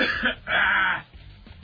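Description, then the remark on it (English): A person clears their throat in two harsh bursts, a short one followed by a longer, rougher rasp, then it trails off into quiet breathing. “It's a good thing with this cough button on, no one can hear me.”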